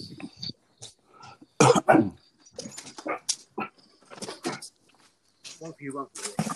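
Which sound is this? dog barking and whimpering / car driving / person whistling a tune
dog barking and whimpering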